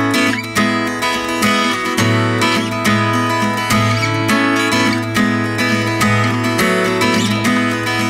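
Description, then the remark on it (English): An acoustic guitar strums full, ringing chords in a steady rhythm, played live for radio listeners, loud and sustained throughout with a warm low end, with no singing or talking over it. “And you've kindly brought in your acoustic guitar, even.”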